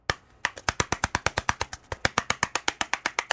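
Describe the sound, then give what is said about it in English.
Rapid, steady knocking on a door: about twenty sharp, crisp raps in an even, fast rhythm after a brief pause at the start, with no voices. “Like, here's a normal knocking on a door, right?”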